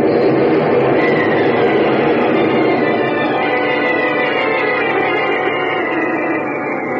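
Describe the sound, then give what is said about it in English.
A loud, steady rumbling roar of the ground cracking open fills the whole clip, a dense grinding noise with a deep low end that holds constant before easing slightly at the very end. No one speaks. “The ground's cracking right under us!”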